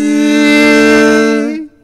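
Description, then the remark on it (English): A person imitates a mosquito's buzz with one loud, steady, nasal voiced drone at a fairly low pitch. It holds for about a second and a half, then cuts off. “Does anyone want to imitate what a mosquito is?”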